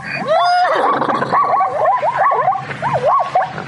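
A zebra gives a loud, dog-like barking call, a rapid run of high yelping, wavering cries repeated over a few seconds, with no talking.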